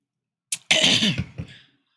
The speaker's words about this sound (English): I've been sick and I thought I was finally over this, but I think I'm having like a lasting effect of my throat hurting. I'm constantly clearing my throat, coughing. It just has not gone away yet, and it's been like a week going on too.